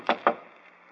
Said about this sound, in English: If you want to enter the shop, why not knock on the door? Yes, quite so, Watson. I'm afraid my etiquette is a bit faulty lately, so just to please you, I will knock on the door.